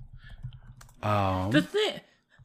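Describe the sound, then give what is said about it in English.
Quick, quiet tapping of computer keys for about a second as someone types in a search for Viking Justice League, then a person's voice breaks in loudly and speaks over the end of it. “I can't believe I'm typing this in.”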